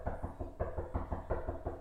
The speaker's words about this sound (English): Hey, that man knocked on my door. That was real aggressive. To be some flowers that wasn't for me.